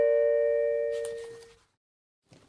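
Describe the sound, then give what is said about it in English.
A doorbell chimes once, a clear ringing tone that lingers and slowly fades out over about a second and a half, followed by silence and a brief rustle. “Now, you may have just heard a little bell at the end of what I was just saying, so we've actually just had to pause the podcast”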